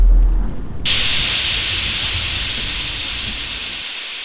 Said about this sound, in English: The waves surmounted the bonnet with a hiss and then a sudden stop, as though the car was poleaxed and left dead in the restless water.